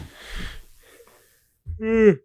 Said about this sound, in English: I was yawning right there. Man, you getting tired? I am getting a little tired,